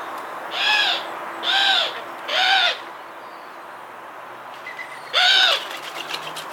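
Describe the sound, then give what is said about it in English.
A collared dove's three-note cooing call rings out clearly, three evenly spaced hollow coos followed by a pause and one more, alone against quiet outdoor background. “The call sounds a little bit like a cuckoo and is a three-note woohoo.”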